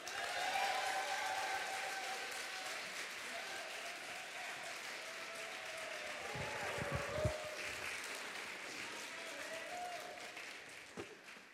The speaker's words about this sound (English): And our next poet, big round of applause for the poet who's going to be starting our second half